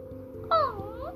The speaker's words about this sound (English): Meow, meow. It looks like the cat is very hungry.